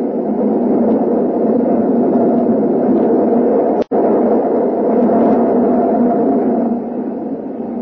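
An elevated train (the L) thunders past the window in a loud, steady, rumbling roar that shakes the whole building, holding for several seconds, broken only by a momentary dropout midway, with no voices heard.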